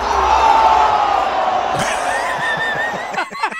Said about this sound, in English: The whole crowd goes, oh!